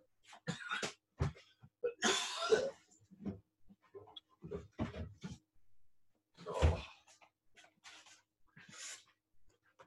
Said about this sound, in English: Oh, much better. That'll take care of the cough.